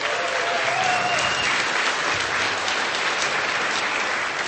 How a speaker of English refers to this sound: So please, let's hear a great round of applause for all of these donors.